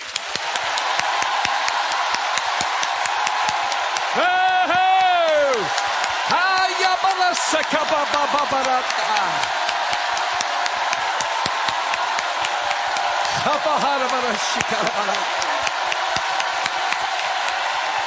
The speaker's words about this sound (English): Let's just on the count of three. 数到三。 Clap our hands. 你要拍掌。 And shout to the Lord. Ready? 呼喊。 One, two, three.